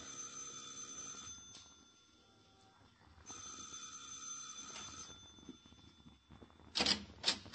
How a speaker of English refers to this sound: Now, you ring the bell, Danny.